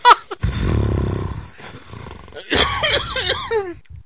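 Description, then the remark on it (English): A person makes exaggerated heavy breathing sounds, a long rough, rasping exhale followed by a few growly, voiced gasps. “I just picture him breathing like this.”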